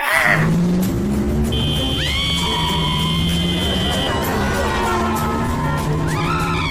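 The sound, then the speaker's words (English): A dubbed sound effect of a car cornering fast, made from a car driven round a corner at normal speed and sped up: an engine revs hard while tires squeal in long, sustained screeches, loud, with the engine droning steadily underneath. “it is just somebody driving a car, probably not that MG because you can't see the actual car, round the corner at normal speed, just sped up”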